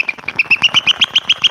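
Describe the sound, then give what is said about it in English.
A Happy Talk Sprites toy figurine, released at Taco Bell, squeaks in a quick, steady run of about a dozen shrill, chirpy squeaks. They are loud and evenly spaced, with no one talking over them. “These are called Happy Talk Sprites. They actually have a little squeaky noise.”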